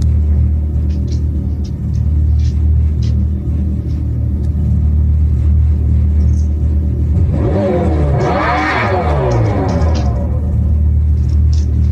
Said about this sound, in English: So Dodge put a fake sound in it that comes out of exhaust pipes, their amplified sound. Right. I think I'll play it for you. The Daytona, the electric vehicle, that has the fake exhaust.